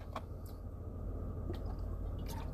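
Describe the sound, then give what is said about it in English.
Someone drinks water: quiet sloshing and a few soft, wet splashy clicks spread over a couple of seconds, set against a steady low rumble with no talking. “I do apologize for that splish splash sound. That's me drinking water.”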